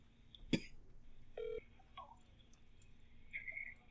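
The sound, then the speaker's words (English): A phone is dialed to call a friend: a sharp click, then a few short touch-tone beeps at uneven intervals, fairly quiet, with no talking. “Let's call up our buddy.”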